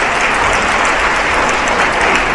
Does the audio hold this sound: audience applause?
yes